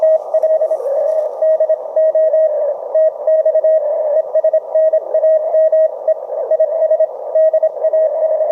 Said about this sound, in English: Well, thank you for letting us hear what that sounds like, both when someone is learning Morse code and it's going relatively slowly, and also when you have someone who's been doing it a while, obviously, and is proficient